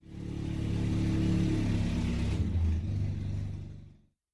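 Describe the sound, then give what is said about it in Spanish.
A 4x4 vehicle engine revs loudly for about four seconds, its deep rumble rising and shifting in pitch before cutting off abruptly. Such 4x4 vehicles carry travellers along the route of the Salar de Uyuni. No one speaks. “De este modo, toma solo 45 minutos en llegar, y de allí toca trasladarse en vehículos de tracción 4x4 por toda la ruta del Salar.”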